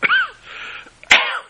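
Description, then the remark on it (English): Two harsh, breathy coughs: a short rasping one with a voiced edge, then a sharper, louder burst a second later trailing into a hoarse exhale. “I always cough.”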